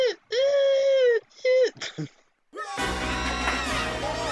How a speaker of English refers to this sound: There's a really weird scream in this. Where is it? It sounds yeah, kind of it sounds alien. Like a camera going, or it's a woman, isn't it?